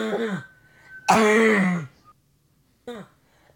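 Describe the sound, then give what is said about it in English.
Three harsh coughing bursts into a microphone from a person with bronchitis, a short one, a longer rasping one, then a brief final cough, spaced with pauses in an uneven beat-like rhythm. “Things can be like beatboxing, like a little coughing into the mic.”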